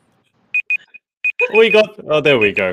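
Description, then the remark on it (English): A run of short, high electronic beeps sounds in quick bursts, like a timer going off, then keeps pulsing underneath as people start talking over it. “This is the first time I've put a timer on it”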